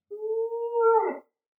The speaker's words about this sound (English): Check that, my dog. I just heard a howl coming from a dog.